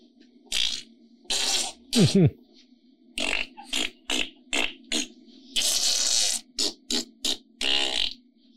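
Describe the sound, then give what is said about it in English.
A voice blurts out a string of wet, raspy fart imitations, about a dozen short bursts with a few longer sputtering ones, loud, with brief pauses between them. “Then he started farting.”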